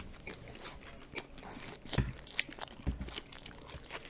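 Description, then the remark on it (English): Someone bites into a hot dog and chews, with soft crunching and moist squishing bursts, two sharper crunches standing out amid steady low mouth noises, no talking. “Clearly not a Nathan's hot dog. Oh my goodness. I don't even know how to get in this thing.”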